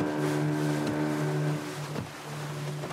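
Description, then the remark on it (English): A small motorboat, no bigger than a fishing boat, crosses open sea from Anjouan to Mayotte, heard from aboard; its engine drones steadily at a constant humming pitch over a broad wash of water and wind noise, with no one speaking. “The boat owner is beside me in the boat, and he charges heftily to take illegal migrants from Anjouan to Mayotte.”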